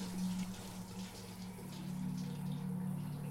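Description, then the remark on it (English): Shower water sprays in a steady, continuous hiss, with a low hum running underneath; the rushing sound stays fairly quiet and even throughout, without voices. “The sound of spraying water put her at ease.”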